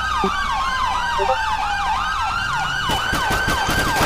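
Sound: police car siren wailing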